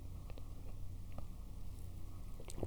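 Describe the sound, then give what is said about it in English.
Quiet sipping of a hot, homemade honey vanilla oat milk latte with extra foam, with a few soft, wet mouth clicks and a gulp spread over a low, steady hiss, and no talking. “I just took a sip and it's amazing.”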